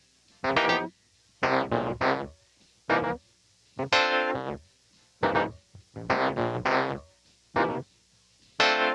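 A funky keyboard part from the chorus of a funk song plays alone in short, punchy chord stabs with a syncopated stop-start rhythm, bright and harmonically rich, with brief silences between the bursts.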